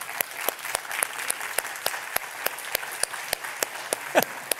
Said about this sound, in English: And I just feel impressed to do something right now. Can we give God an applause of praise with our hands for his word?